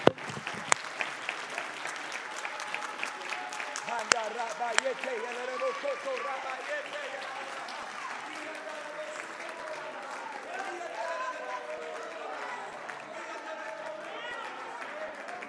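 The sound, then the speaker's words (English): A church audience claps their hands unto the Lord in a dense, sustained burst of applause, a few sharp claps standing out early, while many voices shout and cheer along throughout. “Come on, clap your hands like you really believe.”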